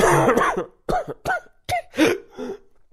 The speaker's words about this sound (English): We still have that awkward coughing clip, right? Bit more, maybe.